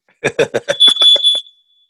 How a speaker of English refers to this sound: You just sounded the alarm. Yeah. I don't know what's on. There might be a fire in my house, but keep going.